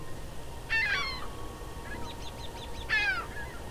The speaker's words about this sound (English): The plaintive wails of the ring-billed gull.